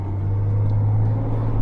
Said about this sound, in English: Logging truck pulling off.